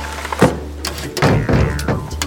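Windows of a house in a village are slammed shut during a dust storm, in a quick, uneven series of sharp bangs, about half a dozen wooden thuds over a low steady rumble, with no voices.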